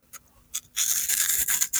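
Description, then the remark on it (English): Someone crunches a Cheeto: two quick crisp snaps, then a steady stretch of dry, brittle crackling chews that pulse unevenly and stay bright and loud to the end, with no talking. “Cheeto.”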